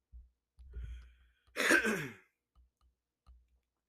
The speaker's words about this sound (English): Sorry for coughing right into y'all's ears.